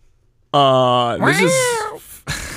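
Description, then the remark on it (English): A single loud, drawn-out meow from a cat covered in lice, its pitch gliding down and then bending upward before trailing off, followed by a brief breathy noise. “This is a cat covered in lice.”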